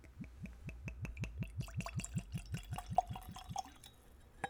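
Liqueur, served neat, glugs from a bottle into a nosing glass in a quick, steady run of gurgles, then trails off into a few soft drips and a faint glassy clink.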